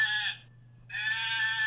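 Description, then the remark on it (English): A person in Aberdeen imitates a sheep, letting out two loud, nasal bleats separated by a short pause, with no other talking. “You're doing a sheep”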